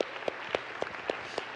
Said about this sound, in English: In fact, can we just give a big round of applause for all of our workers and those of you that brought somebody last week?